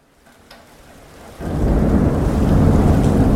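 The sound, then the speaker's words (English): Soft rainfall begins quietly on a Saturday as the weather turns gloomy, then a deep, loud roll of thunder surges in about halfway and keeps rumbling over the steady hiss of rain. No one speaks. “The weather was actually nice during the day, and then it just started to become a little bit gloomy, mm-hmm. and it started to rain.”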